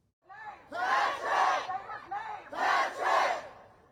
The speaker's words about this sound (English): Several hundred protesters shouted Patrick's name and held Black Lives Matter signs while demanding to know the name of the officer involved in the shooting.